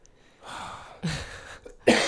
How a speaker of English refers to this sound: Man, people, I'm sorry if I'm coughing a lot, cause I mean I had a little cold for the last week.